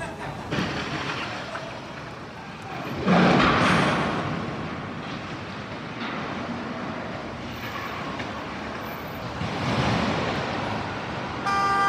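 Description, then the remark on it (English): Busy New York City street noise with steady traffic rumble, punctuated by a loud burst of car horn honking near the start and another swell of honking toward the end. “Yeah, I'd be honking.”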